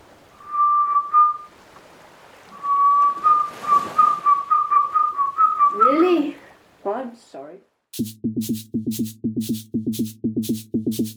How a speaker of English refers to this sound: How about whistling or something? You can do that, can't you? Yeah, what do you want me to whistle? Anything's better than this buzzing. Sure.